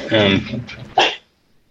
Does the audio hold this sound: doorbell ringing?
no